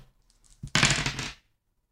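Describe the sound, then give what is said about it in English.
Two six-sided dice (2d6) rattle and tumble across a hard surface in a quick burst of bright clattering clicks lasting about half a second, followed by silence. No one speaks. “Somebody roll 2d6 plus bond.”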